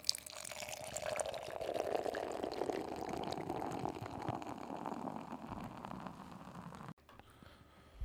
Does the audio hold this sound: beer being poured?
yes